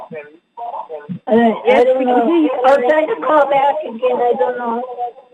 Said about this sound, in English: There is an echo